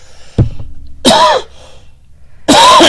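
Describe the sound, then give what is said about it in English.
A dull thump as the microphone is hit by someone trying not to cough into it while covering their mouth, then two loud, harsh coughs spaced about a second and a half apart, with no talking. “I was trying not to cough in the mic, and I, bam, hit it.”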